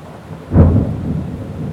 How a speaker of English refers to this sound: And we hear us next time when it's not raining, hopefully, because this is really loud.